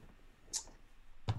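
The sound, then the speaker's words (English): Dice clatter briefly on a table as a reckless attack is rolled in a game, landing on a 20, heard as two quick, faint clicking knocks about a second apart, with no one speaking. “Good job, dice! It's a dirty 20.”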